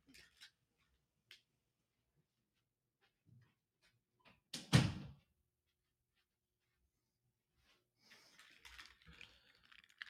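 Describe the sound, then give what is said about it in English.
A bedroom door swings shut with one solid thud after a few faint clicks, followed by a stretch of quiet and then soft rustling movement; no one speaks. “I got to shut my door. Hang on.”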